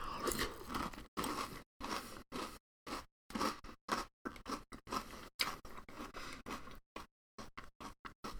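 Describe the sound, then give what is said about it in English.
Loud crunching of Cinnamon Toast Crunch Churros cereal being chewed in quick repeated bites, each crisp burst broken by brief silences, with no talking. “What I mean by that is that it's like, it literally tastes exactly like Cinnamon Toast Crunch, but the cereal bits are like big noodles, because that's kind of what a churro is shaped like a big noodle donut.”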